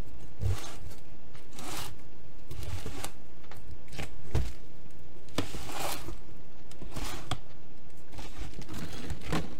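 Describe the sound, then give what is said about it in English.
A cardboard pie box being torn open: a series of harsh, irregular ripping and scraping bursts, fairly loud, with brief crinkly pauses between pulls and no one speaking. “I'll grab the CD player if you start tearing the box open so we can read the liner notes.”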